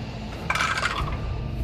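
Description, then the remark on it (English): A brief burst of hard plastic dice clattering and tumbling down through a dice tower, a quick rattling cascade that settles within half a second over a low room hum. “We're using the dice tower. We're going to use the dice tower.”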